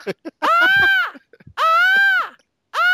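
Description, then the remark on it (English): A person imitates the bird calls from the film Birdemic with three loud, nasal squawks, each a sustained harmonic cry that rises and then falls in pitch, separated by short pauses and faint breathy clicks. “That was a really good bird impression.”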